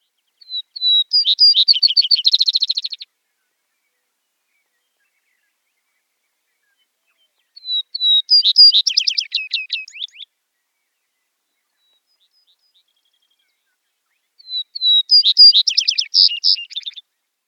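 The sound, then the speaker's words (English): A Vesper Sparrow sings three separate songs spaced several seconds apart, each opening with a few down-slurred whistles before breaking into a rapid, jumbled trill, clear against silence. “All About Birds says Vesper Sparrow's song starts with 1 to 4 down-slurred whistles, followed by a rising and falling trill that ends with a buzzy jumble.”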